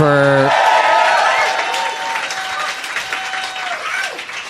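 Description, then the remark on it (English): An audience at an Upright Citizens Brigade improv comedy show claps loudly in a dense, steady burst of applause for the Upright Citizens Brigade staff. The applause gradually softens, with a brief cheer or shout at the start riding over the clapping. “Let's hear it for them.”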